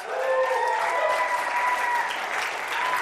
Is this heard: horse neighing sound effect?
no